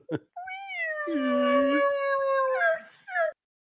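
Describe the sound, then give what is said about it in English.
A loud elk bugle imitation made with an elk call: a long high whistling tone held for about three seconds, then a few short squealing breaks at the end, with no talking. “Kicked us out of the room on accident because I got too excited with the elk call.”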